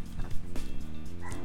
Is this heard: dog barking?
yes